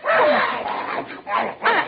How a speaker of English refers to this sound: I hear a dog. Oh, it must be next door at Waldo's house. It's right in this house, in the living room.